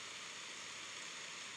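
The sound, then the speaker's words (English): A steady, unbroken noise blend of white noise, brown noise and rain set on 10, an even hiss with a faint low rumble underneath, holding constant throughout with no voices. “See, that's like some white noise, some brown noise, and then a little rain on 10.”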